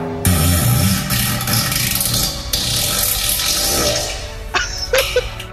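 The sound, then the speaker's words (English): A long, wet, sputtering fart sounds alone, starting with a low rumbling buzz over a hissy, splashy rush and ending with a few short, higher pops. “Fart number five.”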